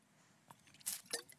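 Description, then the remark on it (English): A quiet sip from a drink: a small wet click, then two short slurping, swallowing bursts within about a second, with no talking. “Let me take a sip.”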